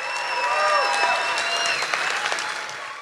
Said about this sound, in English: And let's get a round of applause as we go to break for people at home.